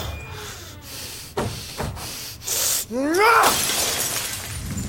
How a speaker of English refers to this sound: They said you smashed the fishbowl. Yeah. Yeah, I did.